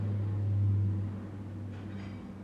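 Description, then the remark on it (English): A steady, low droning engine rumble from a passing airplane, with a deep humming tone that swells slightly and then eases off, with no voices. “Plane just went by.”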